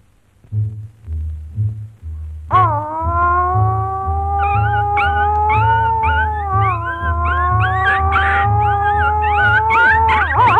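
A long, loud, wavering dog howl rises and holds for several seconds, preceded by a few short muffled whines, all over a steady low rhythmic thumping beat.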